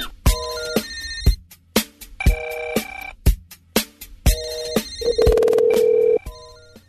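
A telephone rings loudly in repeated bright bursts with a choppy rhythm, then a steady sustained tone holds for about a second before fading. No one speaks.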